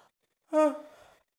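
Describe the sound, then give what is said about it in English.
A single loud, voiced yawn that starts abruptly with a strong tonal sound, then slowly fades over most of a second. No words are spoken, and it is quiet before and after. “After my ridiculous yawn is you can say pass if you want.”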